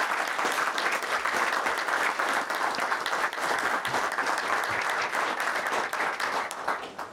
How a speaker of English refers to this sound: Empower is also supporting the event today here with volunteers, both in the kitchen and out in the great room. So let's give them a warm round of applause.